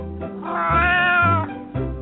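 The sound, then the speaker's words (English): A hairless Sphynx cat lets out a loud, drawn-out meow, rising into a whiny, wailing cry before tapering off, followed by a brief second mew at the end. No one speaks. “I'm talking about the hairless breed of cat, known as the Sphinx.”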